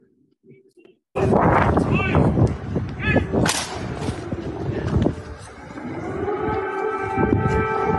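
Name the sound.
air raid siren wailing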